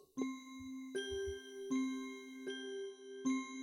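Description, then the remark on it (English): A small bell rings out five times at an even, unhurried pace, each clear metallic tone lingering into the next. Fairly loud, with no voices. “A candle. A flask. A dark book. A little bell.”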